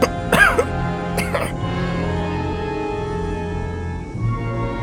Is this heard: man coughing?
yes